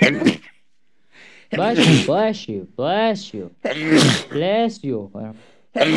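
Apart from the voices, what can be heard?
sneeze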